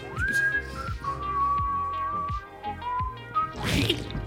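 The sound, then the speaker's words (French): A person whistles a sustained, wavering tune that slides and dips, ending in a brief noisy scuffle like a cartoon slip, with no talking. “Merde, j'étais en train de siffler, mais en glissant, mon sifflement a fait... c'est un bruitage de bande dessinée.”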